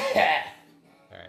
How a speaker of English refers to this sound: Wait, hold up. I'm about to cough, like, a lot. Hold up.